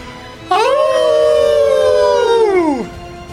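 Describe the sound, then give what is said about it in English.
Wolves in the woods let out a triumphant howl together in a single loud, sustained chorus that swells in, holds steady for about two seconds, then slides downward and fades, with no talking. “And throughout the woods, throughout the area in front of you and next to you, all of the wolves change into their wolf form, and they all let out a triumphant howl.”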